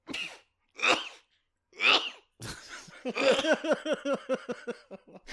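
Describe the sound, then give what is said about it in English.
Three sharp sneezes in quick succession, each a sudden bursting blast, followed by a stretch of rhythmic laughter. “Why are you laughing at my sneezing?”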